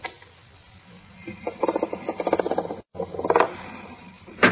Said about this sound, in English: There, and then set the clock at 2 hours like this. Door should open.